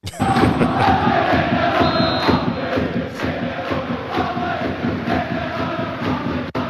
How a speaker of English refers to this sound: So it's going to be hard to distinguish their accent. It's very strong. But they eventually get the chant going pretty good. Kind of slaps. That is strong, guys.